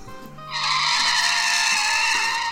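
A car being driven recklessly: its engine rumbles briefly, then tires break into a loud, sustained high-pitched screech of skidding that holds steadily for about two seconds without letting up.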